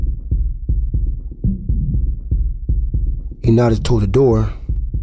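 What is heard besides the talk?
fast heartbeat sound effect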